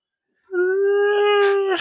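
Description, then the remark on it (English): A person lets out a single long, steady dog-like howl, loud, holding one pitch for over a second before breaking off with a rough, noisy ending. No one speaks. “Sir, why are you acting like a dog?”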